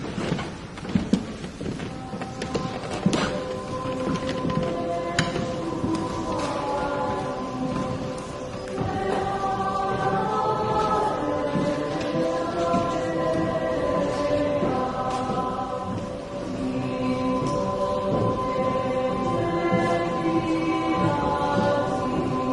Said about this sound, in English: Okay, the noise that you were picking up here, of course, is it's in a church, and what you're picking up is the shuffling of the choir as they stride into the church, making their way down to the altar.